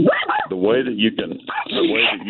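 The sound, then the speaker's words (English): Dogs bark and yip in a quick, excited burst as they walk by outside a car, several sharp, high calls and whiny yelps tumbling over one another for a couple of seconds. “Yeah, dogs are walking. I'm in my car, and some dogs are walking by.”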